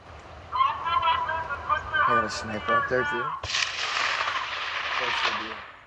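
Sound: gunshots ringing out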